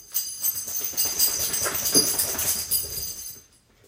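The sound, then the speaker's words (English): Bentley, a 75-pound mixed-breed dog, part husky and part St. Bernard, whimpers and whines for a few seconds, a continuous thin sound with breathy, rustling noise mixed in as he shakes, fading out near the end. No one speaks. “And as I said that letter S, my dog, Bentley, who's a 75-pound mixed breed.”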